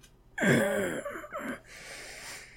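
A woman pants and groans close up, as if through a labor contraction: a sharp voiced gasp sliding downward, then a few ragged breathy exhales fading into quieter breathing.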